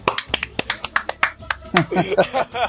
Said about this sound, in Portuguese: Uma salva de palmas.